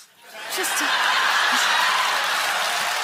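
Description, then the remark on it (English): A live comedy audience bursts into steady applause mixed with laughter after a joke about a trapper, a dense, loud wash of clapping that swells in after a brief quiet moment and holds strong to the end. “Applause break on the trapper bit.”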